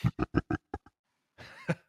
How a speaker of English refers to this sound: Sorry, I just had to clear my throat.